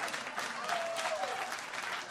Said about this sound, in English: I love how, like, that shit gets applause breaks, like me having a meltdown. People are like, yes, do more of that.